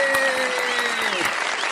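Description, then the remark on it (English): An applause sound effect: a burst of applause from a crowd, steady dense clapping that stays loud throughout, with faint tonal music lines gliding underneath. “I can't believe the applause actually came on cue for a change.”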